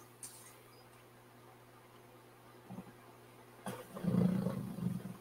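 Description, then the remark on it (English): A dog snores and snorts in low, rumbling grunts while its face is being rubbed: a brief one, then a longer, louder stretch of throaty snuffling toward the end, over a steady faint hum, with no talking. “Indicated by his snoring noises that he makes when you do it.”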